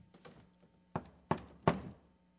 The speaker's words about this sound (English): that this is a great possibility that I may miss the knock at the door.